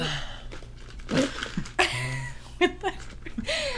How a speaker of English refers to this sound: And you have tissues. I need to blow my nose.